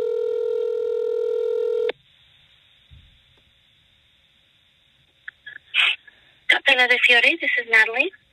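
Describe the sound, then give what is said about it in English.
A loud, steady electronic telephone tone sounds for about two seconds and cuts off as a phone call is placed to an Elvis wedding chapel in Las Vegas. After a quiet pause, a few clicks follow, then a voice starts speaking over the line. “Anyway, here is the phone call.”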